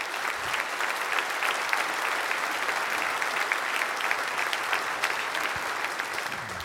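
A church audience claps steadily during a worship service for several seconds, a dense, even wash of many hands with no clear rhythm and no voices, holding at a constant moderate loudness throughout.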